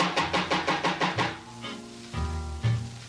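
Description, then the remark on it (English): A quick, even run of about seven loud knocks on a door, then the knocking stops and sustained low musical tones take over. “Maybe I better knock a little louder.”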